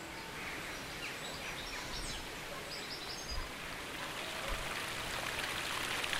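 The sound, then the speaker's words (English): A steady wash of running river water blends with the fine patter of rain in the Peak District National Park in central England, continuous throughout, while faint, brief bird chirps sound. No one speaks. “With 7 rivers running through the Peak District, it's no wonder that this area is famous for its water. Oh, and also, it's rain.”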